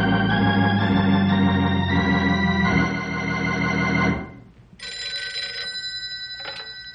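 An old-fashioned field telephone bell rings loudly and continuously for about four seconds, breaks off briefly, then starts ringing again with a fast, rattling pulse, as a call is placed to ranger headquarters.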